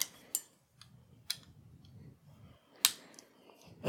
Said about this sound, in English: This is not the best bottle opener.